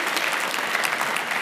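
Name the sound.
audience applause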